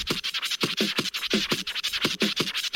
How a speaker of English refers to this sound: Yeah, I just wanted to get to that turntable solo a little bit. So good.